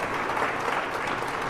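An audience at a church service claps their hands in steady, dense applause after a baptism is announced, a continuous crackle of many hands at an even level with no voices standing out.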